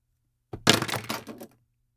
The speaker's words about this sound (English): Here, I will joyously throw these pens in the air in celebration. Here's my celebration for 700 episodes. You ready?